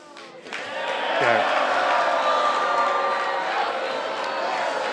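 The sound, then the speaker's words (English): An audience boos at a speaker sharing their favourite sports teams, a sustained, loud wave of many overlapping voices that swells after a brief quieter start and holds steady to the end. “Everyone who's booing, you're just ignorant, that's okay.”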